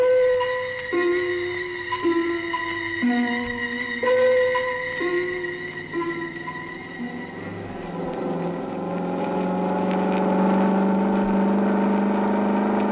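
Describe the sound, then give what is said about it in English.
The engine of a suntan and chrome Cosmoroma car purrs steadily as it drives, its humming pitch stepping up and down in short shifts before settling into a smooth, gently rising and falling drone. No one speaks. “It purred like a kitten, performed beautifully.”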